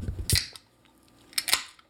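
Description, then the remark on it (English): A can of Coke-flavored drink cracks open: a sharp metallic snap, a brief pause, then a second quick double pop with a short fizzy hiss. No voices. “So let's see what it sounds like when we open.”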